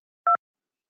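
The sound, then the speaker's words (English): A single short touch-tone keypad beep, a crisp dual-pitched electronic blip lasting about a tenth of a second, heard clearly on its own against silence, as a 6-digit PIN is entered to open the Colin Studio call-in phone lines. “Enter your 6-digit PIN number.”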